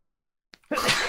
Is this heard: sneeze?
yes